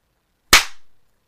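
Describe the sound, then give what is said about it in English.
A single sharp hand clap, made to sync audio, rings out from silence, a crisp, bright crack with a short decaying tail, followed by quiet. “But you clap, and then you can sync it.”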